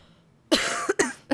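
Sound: cough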